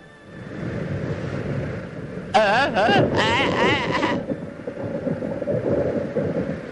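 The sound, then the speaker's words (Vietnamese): Violent storm wind roars steadily at sea, a dense, rumbling wash of noise, while wavering high-pitched wails rise over it for a couple of seconds in the middle. “Đột nhiên trên mặt biển nổi lên trận phong ba kịch liệt.”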